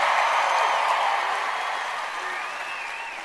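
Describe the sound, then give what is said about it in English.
A live studio audience applauds steadily, a dense wash of clapping that slowly fades over a few seconds, with faint voices mixed in. “We got a good crowd tonight.”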